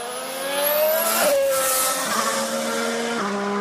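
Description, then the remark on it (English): A racing car engine screams past on track at high revs, its whine dropping sharply with a couple of quick gear shifts as it roars by loud, with no talking. “It's out on track with Jenson Button for the second time this morning, but again, and followed by a Red Bull here.”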